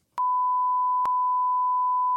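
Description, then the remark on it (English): A steady, loud censor beep, a pure single tone held for about two seconds with a brief click partway through, no voices around it. “We'll beep it out.”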